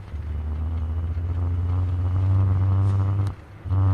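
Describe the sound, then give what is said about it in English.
An electric bike motor hums steadily under load as the bike is ridden up a hill on throttle, a low droning tone layered with faint whining harmonics. It cuts out briefly near the end, then picks back up. “You can hear that sound. That's the engine, or the battery. No engine.”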